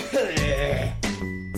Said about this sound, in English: Yeah, that's a good way to start off the show, right? Yeah, me basically cough vomiting.